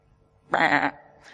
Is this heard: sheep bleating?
yes